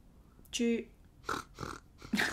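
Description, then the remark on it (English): A person imitates a pig, making a short run of fairly loud nasal oinks and grunting snorts in quick succession. “yes, the pig. That's what we are.”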